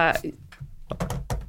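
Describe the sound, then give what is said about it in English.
Quick, irregular taps of fingertips on a hard tabletop, fairly clear, as someone mimes typing on a keyboard on the table, pattering like typing, with brief vocal sounds mixed in. “Why are you mime keyboarding on the table?”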